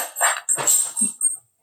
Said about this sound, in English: he's trying to get the cat out and the dog is also being loud.